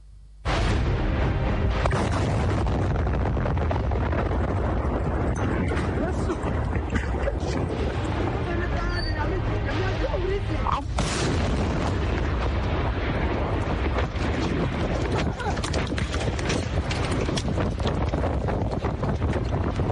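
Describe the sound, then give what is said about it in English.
A sudden, powerful blast at Apiati erupts and gives way to a continuous roaring rumble with heavy wind buffeting, punctuated by further loud bursts, all overwhelming. “Let's begin our discussion with the Apiati explosion. This is what happened.”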